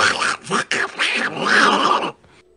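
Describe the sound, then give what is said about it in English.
A man does a raspy, garbled Donald Duck-style voice for about two seconds, buzzing and squawking in uneven bursts with no clear words, then it cuts off to quiet. “That was him doing a Donald Duck voice at the end.”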